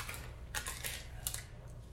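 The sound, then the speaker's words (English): Dice clatter and tumble across a hard tabletop in a short run of sharp, irregular clicks, rolled for a sleight of hand check in a tabletop role-playing game, fairly quiet, with no voices over them. “You didn't have to grab the dice, so I'll just go with wherever it landed.”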